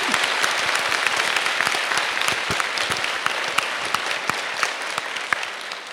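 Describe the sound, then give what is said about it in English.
An audience claps steadily for the full six seconds, a dense, even wash of many hands with a few sharper individual claps popping out, no voices rising above it, applauding a woman for being responsible. “And you are, no, get clap for her because she's been responsible.”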